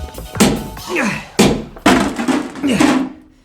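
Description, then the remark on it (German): A long-handled splitting hammer, swung two-handed over the head, slams down on a metal cassette lying on the floor three or four times in uneven succession to break it open, each loud, sharp thunk followed by a short, dull ringing rattle. “spuckte in die Hände und schwang den Hammer beidhändig über den Kopf.”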